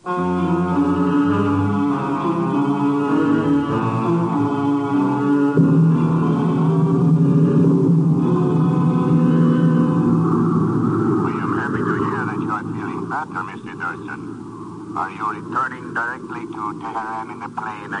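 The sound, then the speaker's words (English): A steady, low airplane engine drones continuously in flight, its hum filling the background while a man begins talking over it partway through. “Are you returning directly to Tehran in the plane I sent for you?”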